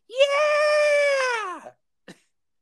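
A single loud, high-pitched sung scream, held steady and strained for about a second and a half before sliding down and cutting off, followed by a brief sharp click.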